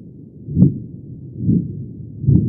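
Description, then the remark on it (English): Three dull, low-pitched thumps arrive about a second apart, each swelling and fading softly like a slow heartbeat: the infrasound of a single explosion reaching a station again and again, the same sound repeated by the atmosphere as it travels through the stratosphere once, twice and three times. “It's just the way the atmosphere takes the original simple sound and repeats it, so we hear it several times.”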